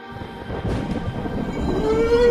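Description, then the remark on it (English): A deep, rolling rumble of thunder swells and builds steadily, loud, with a thin rising tone creeping in near the end, as a frightful storm breaks. No one speaks. “Ooh, it's lucky we've reached the shelter of the old abandoned bandstand just as this rather frightful storm has broken.”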